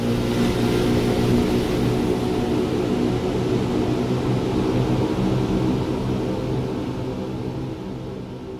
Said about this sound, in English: He sped up the boat.